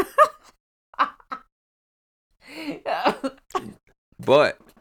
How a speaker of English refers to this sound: Shit, why can't I laugh without coughing like that? Corona.